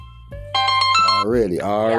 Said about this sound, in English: You know, we stay busy around here. Sometimes you don't understand that we work 24/8. Phone be ringing off the hook.